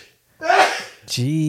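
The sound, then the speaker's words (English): A stifled sneeze: a breathy, strained rush of air lasting about half a second, then a short sharp burst that slides into a held, low voiced hum. “Trying not to sneeze.”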